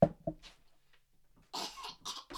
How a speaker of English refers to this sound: You're just clearing your throat.